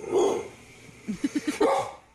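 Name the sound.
dog growling and barking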